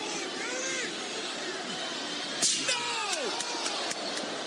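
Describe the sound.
Shane McMahon crashes a steel chair across Vince McMahon's ankle at Over the Edge, one sharp, loud smack followed by a few lighter knocks, over a constant roar of a large crowd with voices shouting.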